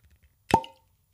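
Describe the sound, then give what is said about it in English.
A single sharp cork pop from a bottle being opened, clear, with a brief hollow ring that fades quickly amid quiet. “Let's hear it. The cork pop.”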